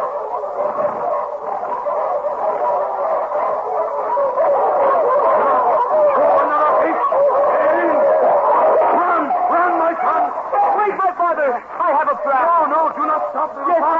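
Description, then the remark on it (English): A pack of wolves howls and yips together while giving chase, in a continuous, overlapping chorus, with rising and falling cries and sharp barks layered throughout, loud. “When we run, the wolves chase us as fast as they can, do they not?”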